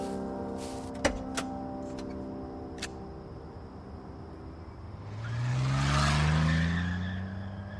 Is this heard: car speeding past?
yes